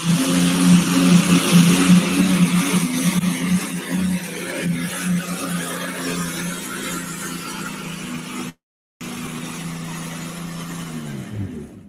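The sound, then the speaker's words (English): A 6,000-pound light modified pulling tractor driven by Daryl Zimmerman, powered by a V12 Allison aircraft engine, roars at full throttle: a deep, rough drone with strong low harmonics, briefly cutting out before resuming and winding down, with no voices. “Over here on the light modified side, 6,000-pound modifieds, Daryl Zimmerman, V12 Allison Aircraft.”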